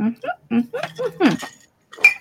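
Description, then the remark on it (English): Glasses clink together in a toast, a bright ringing tap standing out near the end, with voices talking over the moment. “Everyone cheers, then takes a drink.”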